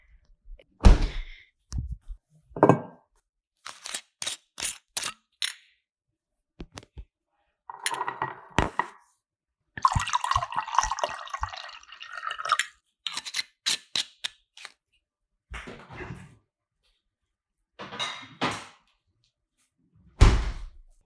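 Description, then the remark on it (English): Wine is poured into a whiskey glass in a few-second burst of liquid splashing, surrounded by clinks, taps and thunks of a bottle and glass being handled. No one speaks. “I'm going to go pour myself another glass of wine, even though I'm drinking it out of a whiskey glass, but that's fine.”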